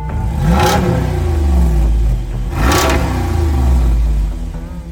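A Jeep Wrangler's 470-horsepower 392 V8 engine revs hard twice, loud, each roar climbing sharply then falling back to a deep, throaty idle rumble. No one speaks.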